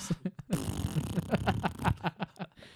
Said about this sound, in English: There's someone farting.